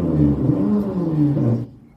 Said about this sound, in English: I think it's a motorbike just... I don't know what that is. It sounds terrifying.